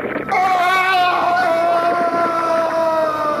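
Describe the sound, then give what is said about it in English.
A flying saucer sound effect: a loud, buzzy, harmonic hum kicks in abruptly, then drones steadily for about three seconds while its pitch sinks slowly and slightly wavers. “It's not an impression. It's the flying saucer.”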